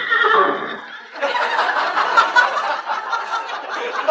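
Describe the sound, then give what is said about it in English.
A horse neighs loudly, a shrill whinny that breaks into a long, rough, shuddering call lasting several seconds, with no one talking. “Great Dane? Sounded like a horse to me.”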